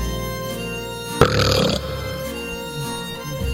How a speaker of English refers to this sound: Stop burping! Stop burping!